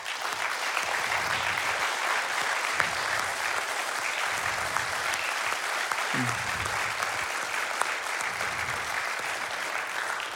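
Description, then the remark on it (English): A crowd claps steadily for about ten seconds, a dense, even wash of applause from many hands at a consistent volume, given as a thank-you to the team that runs the Bartlett Community Care Initiative. “And so I want to just ask you would you just give a round of applause as a way of saying thank you to the team that runs Bartlett Community Care Initiative?”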